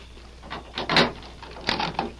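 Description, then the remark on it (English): A door is unlatched and opened, with a few short clunks and a scraping rattle of the mechanism, fairly quiet against a low background hiss. “Open the door.”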